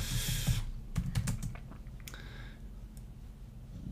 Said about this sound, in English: Malfunction. That's what I'm typing in, bro.